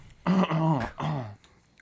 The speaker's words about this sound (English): Just going to cough like that on the podcast? Sorry. Just going to cough?